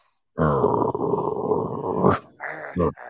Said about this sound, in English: I hear a dog growling.